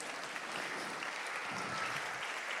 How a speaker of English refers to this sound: Let's give them a round of applause as they come.